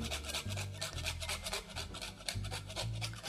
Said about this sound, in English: So I'm using my microplane to grate my cheese.